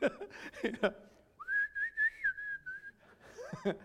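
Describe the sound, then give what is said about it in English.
A person whistles a short, wavering tune for about a second and a half, clear, with people talking just before and after. “And so I don't know if he started whistling.”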